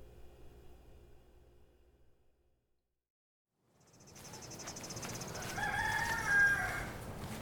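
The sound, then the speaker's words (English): After a low hum and a brief silence, outdoor farm ambience fades in with chirping insects, and a rooster crows by a chicken coop along a trail behind the farmhouse, its call rising and peaking near the end. “walk behind the farmhouse and down a trail that goes past the chicken coop I used to clean and collect eggs from.”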